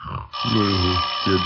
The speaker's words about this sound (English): Oh, doorbell. It must be the tax collector. They come every day now, just like the milkman.